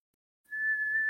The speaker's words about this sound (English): I hear her whistling. Can you hear me? Oh, nope, I guess she can't. That was weird. I heard you whistling, but I guess you didn't hear me. I heard you through the wall.